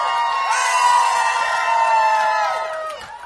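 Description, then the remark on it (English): A large audience shouts and cheers together in the morning in a sustained, loud roar of many overlapping voices, holding steady for about three seconds before starting to fade. “He's risen, and because of that, this is a morning for shouting.”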